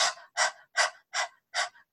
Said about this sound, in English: This will force the action of the navel point and get you familiar with breathing, abdominal breathing. This is the great breath of fire. Enjoy.